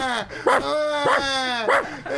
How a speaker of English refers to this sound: The fucking dog's barking